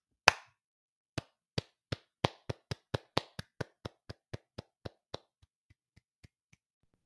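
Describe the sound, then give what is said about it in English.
One sharp hand clap, a pause, then a quickening run of about a dozen crisp claps, followed by a few much fainter taps trailing off. No voices. “If you're anxious and you know it, clap your hands.”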